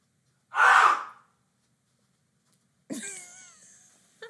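A short, harsh breathy burst, then a pause of about two seconds before a man, having stepped away from his microphone, lets out a strained, wavering scream that rises and trails off. No speech.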